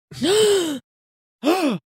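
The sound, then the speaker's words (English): A sharp, breathy gasp of surprise, followed after a short pause by a second, shorter gasp. No talking. “did you just gasp yes. for yourself?”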